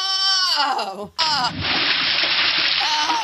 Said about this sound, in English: Suddenly, there's a splash.